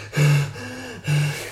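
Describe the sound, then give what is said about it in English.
A voice imitates the heavy breathing heard from a caller on the phone: two loud, rasping breaths with a softer one between, slow, with no words spoken. “And the phone rings, I answer it, and it's just heavy breathing.”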